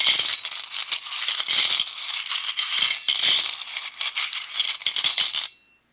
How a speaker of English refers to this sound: I put all my stones in a Tibetan bell, because that's what we use today, so I'm doing it now.